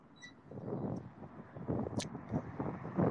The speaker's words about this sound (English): It's been pretty windy today.